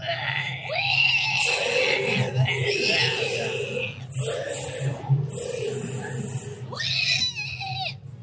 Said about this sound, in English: And this thing just writhes and screams.